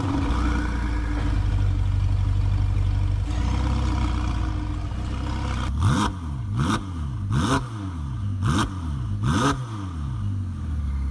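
The twin-turbo V8 of a Ferrari F8 Tributo, the same engine used in the 488 Pista, idles with a deep rumble, then is blipped in a rapid series of about six sharp revs, each rising and falling quickly, loud with no talking.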